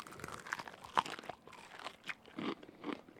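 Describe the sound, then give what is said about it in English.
Crisp crunching as someone bites into exceptionally crispy Taco Bell fried chicken wings served with Mexi Ranch, a sharp crack near the start followed by several chewing crunches, with no talking. “They are exceptionally crispy. I will say that.”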